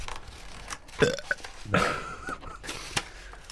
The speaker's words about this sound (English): Start the episode. You can put the burps in. No, you can't put the burps in.